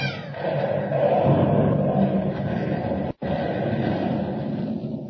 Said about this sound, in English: So the tiny rocket ship roars into the uncharted heavens as the mighty planet of Krypton explodes into millions of glowing fragments.